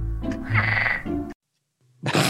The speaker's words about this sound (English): That's why I wrote dinosaur question mark. Yeah, it sounds like the velociraptors. Yeah. Yes, it does. It does. Yep. Again, we still could have been figuring out frog sounds at that point.